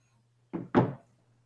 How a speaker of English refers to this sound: And you see a taxi cab pull up. He pulls the door open, gets in the taxi, slams it, and peels off before you can do anything.